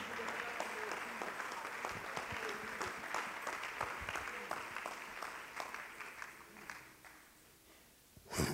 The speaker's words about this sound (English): If my music will come, let's stand to our feet. Let's clap our hands. Let's glorify God.